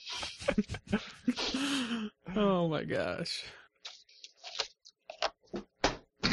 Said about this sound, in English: I just knocked over my lightsaber.